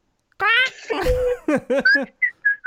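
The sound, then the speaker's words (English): A person imitates a bird, starting with a voiced warble and a breathy burst, then a quick run of short whistled chirps and tweets that fade into brief, high peeps. “Birds just don't go blah, blah, blah. Yeah, they go...”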